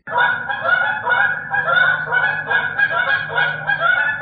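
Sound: flock of geese honking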